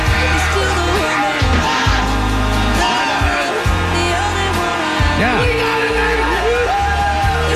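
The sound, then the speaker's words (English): A person loudly imitates a roaring, screaming crowd of football fans, sustained yells and whoops with rising and falling pitch, continuous for several seconds. “They're showing like tackles being hit and like big fans hits. Screaming like.”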